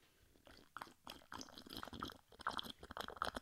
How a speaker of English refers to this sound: because I wanted to take a sip of my drink, but I didn't think I had enough time